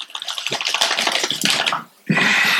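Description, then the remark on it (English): Crackly rustling of a bag as the one chip challenge chips, here sold in a bag, are poured out, a dense scattering clatter that stops briefly for a moment, then resumes as a steady loud rush. “But obviously it's in a bag and not a one chip challenge.”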